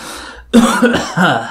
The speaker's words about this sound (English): Merlin coughed.